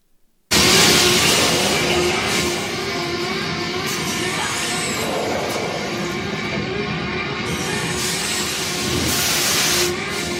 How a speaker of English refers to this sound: Here's a little sound when you're up in the ship with the fake Sigourney Weaver up against the side and you hear like the sirens in the background and like the, you know, that fog was blowing out.